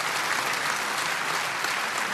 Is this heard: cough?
no